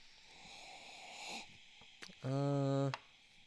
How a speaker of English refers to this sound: I'm ready to taste this beer. Sniff the other one? Yeah, let's sniff it. I forgot we do that first.